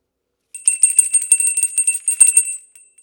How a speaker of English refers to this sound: that sounds more like a fine dinner bell.